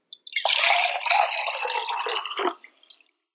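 liquid being poured

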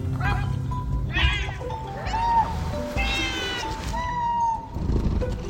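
cat meowing

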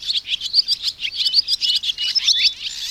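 swallows chirping

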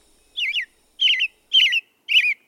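songbird chirping

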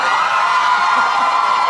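audience cheering

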